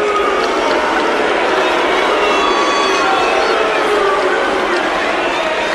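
A large stadium crowd at a tennis match chants "sue", a soccer chant, in a loud, dense roar of massed voices that holds steady and unbroken for the whole stretch with no pauses.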